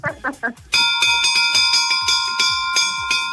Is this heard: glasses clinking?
no